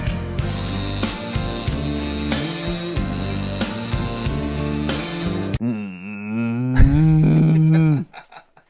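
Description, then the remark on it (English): A steady, beat-driven music passage stops abruptly, and a person imitating a cow takes over with a low, wavering, drawn-out moo, swelling into a loud sustained bellow before cutting off. “This might be that's a cow impression.”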